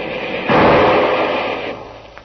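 A single loud Garand rifle shot cracks out of a muffled, hissy background, its boom rolling away in a long echoing decay over about a second. Nobody speaks.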